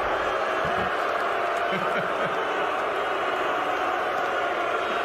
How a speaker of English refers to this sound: But it was beloved Commissioner Roger Goodell who kicked things off. And here he is after being introduced to the raucous crowd in Las Vegas. Let's go, Las Vegas!